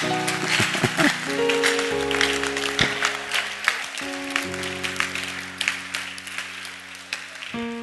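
A church audience applauds a pastor during a service after a scripture reading, steadily for several seconds, a dense crackle of many hands clapping, while sustained organ-like chords hold and shift underneath.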